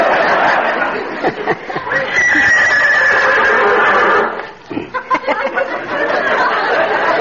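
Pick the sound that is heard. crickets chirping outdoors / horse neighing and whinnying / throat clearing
horse neighing and whinnying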